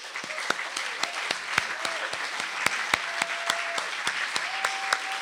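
An audience applauds the next storyteller steadily, dense overlapping claps filling the whole stretch with sharp individual smacks poking through, plus a few brief whistles or whoops rising above the clapping.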